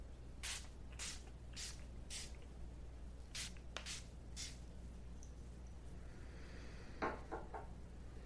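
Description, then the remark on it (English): A spray bottle spritzes a mist of water infused with essential oils and charged crystals in a series of short, hissy bursts, about eight pumps in a loose rhythm, followed by a few faint rustling sounds over a low steady hum. “This is an infused water with essential oils and charged crystals.”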